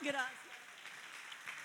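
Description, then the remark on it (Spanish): A brief voice at the start gives way to steady applause from a church audience for a man, a dense wash of clapping that stays fairly quiet and even. “Dele un aplauso a ese varón.”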